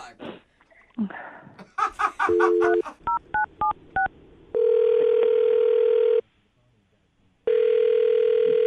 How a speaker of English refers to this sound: All right. Here we go. I'm dialing now.